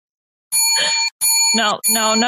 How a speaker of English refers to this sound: All right. Ring that bell. Let's go.